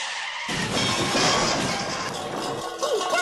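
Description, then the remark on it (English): A vehicle suddenly slams into a salmon smokehouse building with a loud, dense burst of crashing noise, followed by sustained rumbling and clattering debris, with a brief squeal near the end. “We've crashed right into Gus and Sons and Daughters' jointly owned Salmon Smokehouse!”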